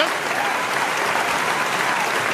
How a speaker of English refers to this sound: Can we please stop the clapping? Can we stop the goddamn clapping?